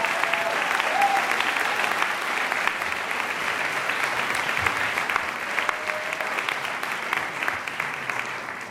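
Sustained audience applause at a Goldman School of Public Policy (GSPP) graduation, for the graduates' families, spouses, partners, children and friends: a dense, steady clatter of many hands clapping that holds at an even loudness for the whole stretch, with faint whoops and voices mixed in.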